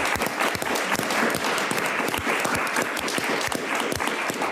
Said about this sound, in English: And please, won't you join me, everyone, in giving her a most deserving round of applause.